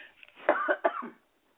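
Two harsh coughs in quick succession, each a sharp burst trailing into a raspy rumble, with no talking around them before silence falls.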